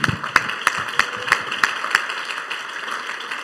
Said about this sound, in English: Come on, somebody clap your hands unto the Lord.